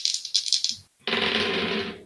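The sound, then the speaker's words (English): A pair of dice, rolled in a game for bite attacks, rattles in a few quick clicking bursts, pauses briefly, then clatters and rolls across a hard surface in a steady, bright rattle for about a second. No one speaks. “I'm going to switch over to a different pair of dice as they go over and try to bite Carolina as well.”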